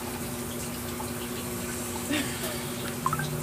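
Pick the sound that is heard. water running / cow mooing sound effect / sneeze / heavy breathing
water running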